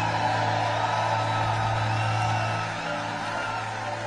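A large crowd applauds and cheers in a steady, dense roar of clapping and whoops that holds for about four seconds, easing slightly toward the end.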